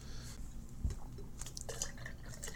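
A person sips a sour pickle beer by Urban Artifact, a Northside brewery, tasting of roasted peanut, dill, cucumber and sea salt, with soft wet slurps and a few small liquid clicks and drips over a couple of seconds. The sounds are quiet and no one speaks.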